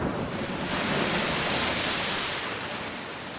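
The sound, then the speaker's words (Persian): A single sea wave at dawn swells and washes ashore with a broad, hissing rush that builds, then slowly recedes into a softer fizz. It sounds steady, with no voices. “پیمانه و زر در دست پا به دریا گذاشت. موجی آمد و رفت.”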